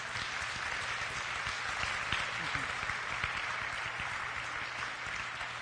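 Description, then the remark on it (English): An audience gives a clap offering to the Lord in a church service, a steady, dense wash of clapping that holds at an even loudness for several seconds, with faint voices mixed in underneath. “Can we give a clap offering Amen. To the Lord?”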